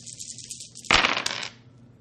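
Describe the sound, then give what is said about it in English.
Two dice are rolled on a table: a sudden burst of hard clattering as they tumble and rattle across the surface for about half a second, then settle, with no one talking. “What are you rolling for Devious Deceit?”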